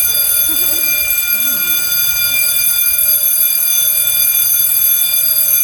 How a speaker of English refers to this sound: There's that lovely bell, which we've heard for the second time today. Our session was cut short today because of a fire drill.